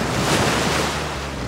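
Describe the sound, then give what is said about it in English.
Ocean surf pounds in a loud, steady roar of crashing waves, a dense wash of noise with a slight swell near the start and no voices. “And once they're at the ocean, the constant pounding of the surf crushes them even further, right?”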